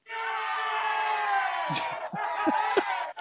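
A canned crowd cheering effect played from a soundboard: dense, steady roar of many voices with whoops and shouts, lasting about three seconds before cutting off abruptly.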